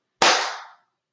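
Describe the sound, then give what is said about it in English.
A single sharp hand clap, made on a count of three to sync up a recording, cracks out loudly, with an instant attack and a brief ringing tail that fades within about half a second. No voices. “So like on the count of three, we just clap.”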